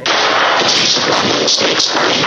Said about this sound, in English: Yeah. That was static, right? Yeah, but I can hear somebody saying something.